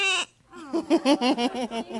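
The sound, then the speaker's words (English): A young child's voice imitates a lamb's bleat, a wavering, quavering "baa" that pulses rapidly for over a second, fairly loud, after a brief breathy sound. “What kind of noise does a lamb make?”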